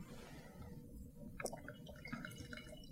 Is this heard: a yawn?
no